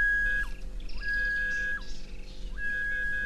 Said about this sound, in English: This is this H damage detector, which combines ground penetrating radar with metal detection technology. And you're going to hear the metal detector, which I will demonstrate for you now.